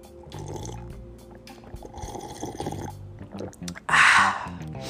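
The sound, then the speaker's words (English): Coconut water pours into a glass, a short gurgling splash near the end that rises above a murmur of softer background sound before trailing off. “Hold on, let me go ahead and just get a little bit more, just a touch of this coconut water.”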